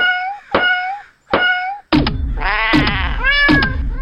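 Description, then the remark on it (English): A series of hard smacks, about five sharp thumps at uneven intervals, as a jammed cat cartridge is smacked back into place in a gun, each setting off loud, rising cat meows and yowls that overlap into a frantic caterwaul by the end. “Hang on, let me smack the cat cartridge back into place.”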